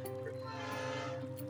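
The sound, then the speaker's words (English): A train rumbles past, a steady droning noise with sustained tonal hum filling the whole moment, without any voices over it. “And I'm going to mute my microphone and you talk, because the train's coming past.”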